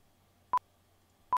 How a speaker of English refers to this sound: Now, usually how this is done, there are a few ways, but one of the traditional ways this is done is with three beeps. So right before you have a line, you'll hear.